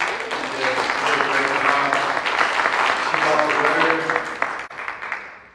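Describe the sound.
An audience applauds steadily for several seconds, the clapping dense and fairly loud with a murmur of voices mixed in, then tapering off near the end; a round of applause called for a woman from the previous Sunday.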